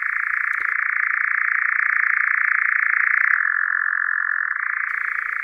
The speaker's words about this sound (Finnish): Kehrääjä on yöaktiivinen hyönteissyöjä ja se laulaa pitkälle heinäkuuhun. Laulu on erikoinen, tuntea lähes tauotta soiva surina. Ääni on voimakas ja kantaa useita kilometrejä tyynessä säässä.